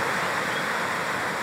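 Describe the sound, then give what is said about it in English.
Heavy rain pours down outdoors in a steady, dense hiss, a loud continuous wash of bright noise with no breaks or individual drops standing out, and no voices. “So we're getting some good rain here. I don't know how this is going to affect the audio, but...”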